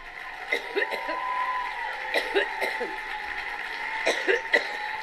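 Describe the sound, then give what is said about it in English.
A woman coughs uncontrollably in three short clusters of harsh coughing, each a quick run of hacking coughs, over a steady background hum with a faint murmur of people. “was coughing so uncontrollably, she requested a glass of water.”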